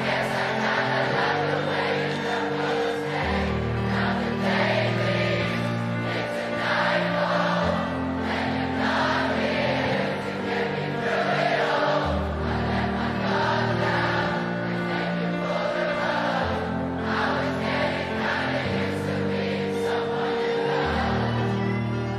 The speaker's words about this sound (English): And man, the massive crowd helped him finish the song.